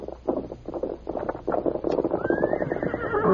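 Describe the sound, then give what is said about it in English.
A horse, Scout, whinnies loudly as it arrives without its rider Tonto, its neigh rising and wavering, while hooves clip-clop rhythmically underneath throughout the short stretch. “Horse coming.”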